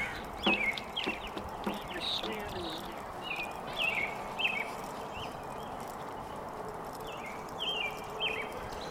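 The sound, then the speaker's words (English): Birds chirp and call in short, bright bursts scattered throughout, over a steady outdoor background hum, with a few faint clopping thuds early on. “I think the simple truth is that birds are more interesting than people. They got more interesting things that they're saying.”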